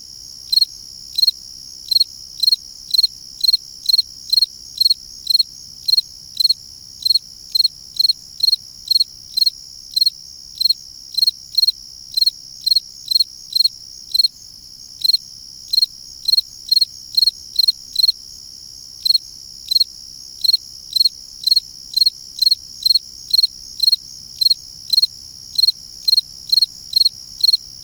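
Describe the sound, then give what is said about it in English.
A fall field cricket sings alone, clear, repeating short bright chirps in a steady rhythm with a few brief pauses, over a faint low background hum. “… recorded this field cricket for their CD, ….”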